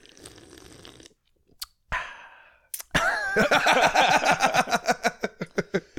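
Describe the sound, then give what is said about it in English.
Wet sipping and swallowing of beer: a quick slurp, a breathy exhale, then a long run of rhythmic, loud gulps repeating steadily to the end, with no talking. “We'll just edit in to some sips and some beer pops. And... Oh, I can provide all the sips.”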